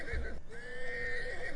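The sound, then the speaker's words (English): A horse whinnies twice in quick succession, a short shrill neigh followed by a longer, sustained one, loud like a sound effect. “Anyhow, give them a little double whinny golf clap.”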